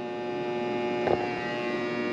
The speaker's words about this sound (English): Okay, that's the washer.